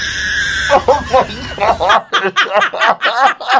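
A lyrebird at a zoo in Australia, which has learned its sounds by mimicking what it hears in the zoo, mimics a crying baby: a run of loud, rapid, wavering high-pitched wails in choppy bursts, following a brief steady tone at the start.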